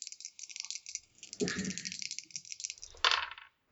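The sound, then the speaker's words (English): Dice rattle and tumble across a hard tabletop during a game, a stretch of quick clicking clatter that ends with a sharper final clack before settling into silence; the roll comes up 12. “I rolled a 12.”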